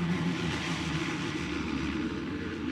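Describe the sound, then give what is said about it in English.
A DC-3 propeller airplane drones steadily overhead, its engine hum constant and fairly loud with a broad rushing wash, as it begins its approach pattern to land at an abandoned airport before dawn. “Moments later, the DC-3 knifes out of the sky and begins its approach pattern.”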